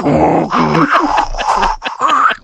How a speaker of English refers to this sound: Oh, it's my dog barking. Of course. It's so distorted through the headphones, it sounded like a fax. My dog sounds like the old internet sound that when you dial up. Yeah, that's the same sound.